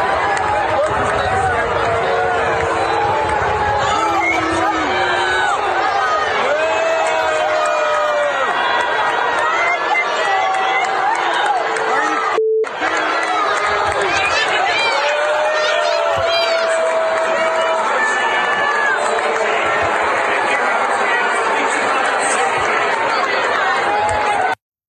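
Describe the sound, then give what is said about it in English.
A huge stadium crowd boos loudly, a dense, continuous roar of many voices with drawn-out jeering tones rising over it, broken only by a split-second cut near the middle. “But the fans, listen to the fans booing here.”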